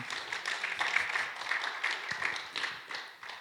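An audience breaks into steady applause, many hands clapping in a dense, bright patter that holds at a fairly even level for several seconds before tapering slightly at the end.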